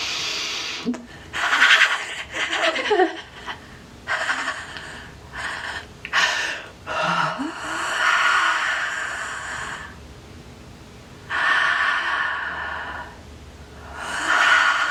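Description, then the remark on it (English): Slow, deep breaths drawn in and pushed out, repeating in long airy swells with brief pauses between, no talking. “Deep breaths. Keep breathing it in.”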